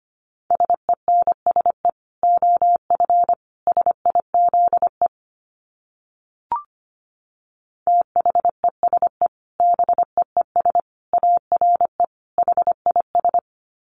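Rapid Morse code at 25 words per minute keyed on a single steady mid-pitched tone, brisk dots and dashes in two long runs separated by a few seconds of silence broken by one faint click. No voices.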